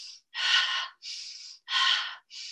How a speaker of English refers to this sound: Three-dimensional breath would be, well, we can have a belly breath, which may come from yoga, which has its uses. Where, let me see if I can do this, where you can breathe primarily just in your belly. So you're breathing.